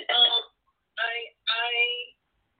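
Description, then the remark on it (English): Three short bursts of a tinny, narrow-sounding voice from someone's telephone conversation coming through the line, separated by brief silences. The words are unclear and the level is moderate. “I'm hearing a phone call.”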